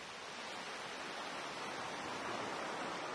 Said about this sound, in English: Just listen to the waves.